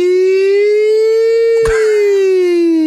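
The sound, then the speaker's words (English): A voice imitates an emergency siren with one loud, sustained tone that slowly rises and falls in pitch for about three seconds, broken briefly by a sharp knock partway through. “Well, I don't know what the difference is between an ambulance siren and a firefighter siren.”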